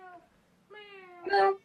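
A cat that has just woken up meows, a faint short mew followed by a longer, drawn-out meow that swells louder at its end. No talking.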